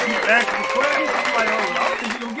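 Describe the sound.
Scattered applause from a small group rattles along steadily for a couple of seconds, close and fairly loud, with people talking and calling out over the clapping.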